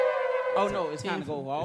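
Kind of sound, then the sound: sound effect, bell sound effect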